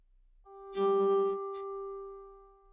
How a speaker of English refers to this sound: For all those who have died because of who they are, what they believe, the color of their skin, their gender, or sexuality, we ring a bell. For all those who have died lost, forgotten, alone, we ring a bell.